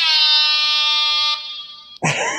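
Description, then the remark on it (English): A loud, sustained electronic censor beep covering a person's name, harsh and buzzy, holds steady for about two seconds, dips briefly, then cuts off abruptly into a burst of noisier sound. “just drop in like a beep right there.”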